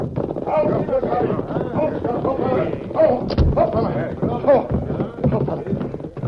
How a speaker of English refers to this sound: Finally, from outside, there came the sound of approaching hoofs. The Lone Ranger recognized them immediately as those of Tonto's paint horse Scout. Here comes Tonto now. I know that sound.